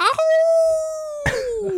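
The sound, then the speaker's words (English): A single long Wolfman Jack howl, held on a steady pitch for about a second before sliding downward, loud, with brief vocal bursts at its start and midway. “You heard that howl, didn't you? I did. I heard the howl.”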